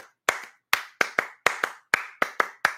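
A single person claps their hands in a steady rhythm to show a normal clap, about a dozen sharp, crisp claps that often fall in quick pairs. The claps are clear and alone, with no voices.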